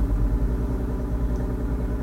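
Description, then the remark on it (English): A neighbor's boat engine, revved to warm it up for the day, rumbles steadily, its deep, throaty drone running continuously with a slight pulsing rhythm and no voices. “The neighbor has decided to... Rev his boat engine. Because he needs to warm it up for the day.”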